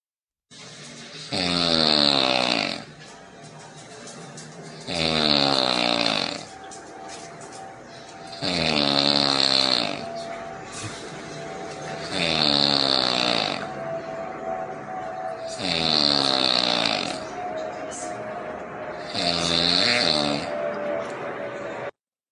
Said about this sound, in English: what I want to do is to show you a video where a husband wanted to point out in a very humorous way that his wife has a problem snoring at night.